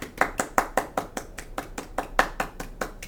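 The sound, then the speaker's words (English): A polite golf clap for a raffle winner: a steady, even run of about sixteen crisp handclaps at a moderate pace, fairly soft and unhurried, with no voices. “He won applause. Polite golf clap.”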